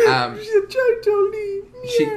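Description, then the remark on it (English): A cat meows in a run of whiny, drawn-out cries, each with a wavering mid-high pitch that rises and falls, several calls strung together over a couple of seconds. “Yeah, I can hear that cat going.”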